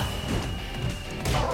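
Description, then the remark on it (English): A computer with a frowny face being smashed in a video game: a loud, crunching smash with noisy debris clattering under a steady electronic hum and a second heavy crash near the end. No voices. “The computer had like a frowny face on it as it was being smashed.”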